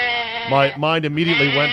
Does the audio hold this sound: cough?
no